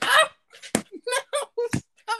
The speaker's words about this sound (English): Stop clapping in the mic. Stop clapping away from the mic.